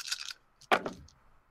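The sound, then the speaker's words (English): A brief rattle of eight dice shaken together, then a sharp clatter as they land and tumble across a hard surface, ending with a last small click. Fairly loud, no voices. “Okay, so you'll roll 8 dice, please.”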